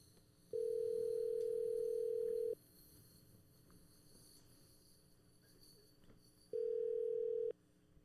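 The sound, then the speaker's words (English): An outgoing phone call to a special guest rings: a steady, mid-pitched ringback tone sounds for about two seconds, goes quiet for several seconds, then starts again. There is no talking. “Let's call the big homie, man.”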